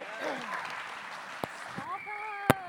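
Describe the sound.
An audience applauds steadily, a dense wash of clapping with voices calling and cheering over it and a couple of sharper, louder claps standing out near the end.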